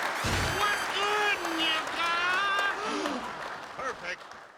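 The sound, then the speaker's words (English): Applause-like clapping rises under excited whooping and cheering voices, a dense, steady patter that lasts a few seconds before tapering off. “Clap for me, bitch.”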